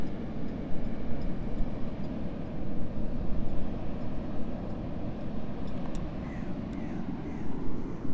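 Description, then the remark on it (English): Steady, blustery wind rumbles throughout on the beach at Harlyn on a chilly morning, a low roaring wash that buffets the microphone without letting up, with a few faint high chirps briefly audible near the end. “It's a bit chilly and there's a wind blowing, but it can only improve from here.”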